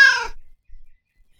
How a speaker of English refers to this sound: A neighbor looking for his cat. Is this the cat? Yeah, she followed me home last night, so I didn't want to be rude. I'll let her out later.